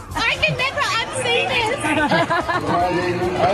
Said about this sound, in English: Time we do, it's because a guy's in a mankini. That's Australian, mate. Here is how the crowd reacted.